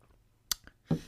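A quiet sip of hot tea: a soft clink or tap, then a short wet slurp and swallow, with no talking.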